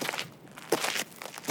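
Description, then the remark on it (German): Footsteps of a man striding along with water to his right, at an even pace, about six crunchy, brushing steps in quick succession, fairly soft and with no voices. “Er dachte, während er ausschritt, das Wasser zur Rechten, über die Einsamkeit nach.”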